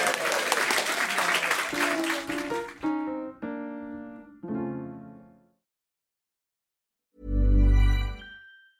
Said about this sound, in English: And God, you're only clapping for yourselves. You're winning.